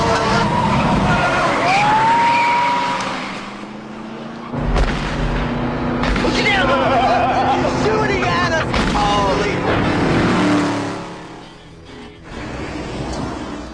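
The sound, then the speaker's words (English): A car engine revs hard and roars off with a burst of tire and road noise as its occupants flee after being caught tampering with mailboxes, loud at first, then fading and surging again amid muffled voices and rumbling. “They took off, but yeah, guy actually caught them and threatened, called the cops on them, and they just took off.”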